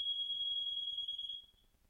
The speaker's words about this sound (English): Speaking of fire alarms, in a weird twist of fate, the fire alarm in my apartment building went off during our interview, literally minutes after.